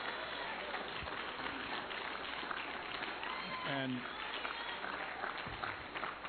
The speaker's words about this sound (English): you are clapping and I am shaking. I'm serious.